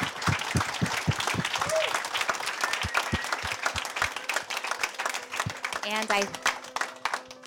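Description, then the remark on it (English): An audience breaks into sustained applause, dense overlapping claps filling the room at a steady, fairly loud level, with a few brief voices and a whistle-like tone rising above it. “Can we give everyone a big round of applause?”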